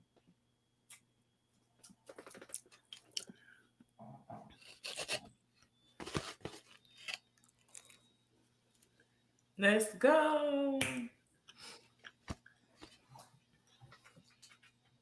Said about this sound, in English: Okay, she's chewing. She's getting into it. I anxiously await.